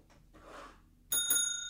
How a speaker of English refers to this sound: Kind of sounds like the boxing bell. Yeah. Sounds like you're asking for a waiter. Waiter. Concierge. Concierge. That's live sound effects in the studio.